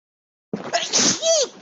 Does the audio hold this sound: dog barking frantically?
no